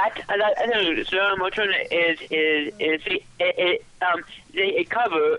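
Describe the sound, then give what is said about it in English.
A cover version of a Hebrew song, with a voice singing short melodic phrases separated by brief gaps, sounding thin and tinny like it is heard over a telephone or small radio. “It's a cover of a Hebrew song.”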